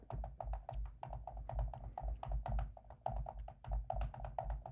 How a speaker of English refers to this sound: He's typing out the lyrics.